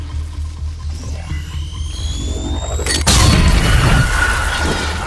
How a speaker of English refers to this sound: Did you hear that? I am almost positive they used... I do hear that. I am positive they used the Wilhelm scream for the disintegration sound.